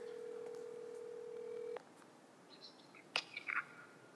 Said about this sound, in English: So I'm going to call him up on the phone and hope that he answers.